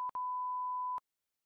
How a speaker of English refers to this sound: Beep the name. Just beep the name.